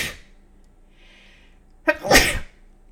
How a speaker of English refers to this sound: Sorry, I have to sneeze.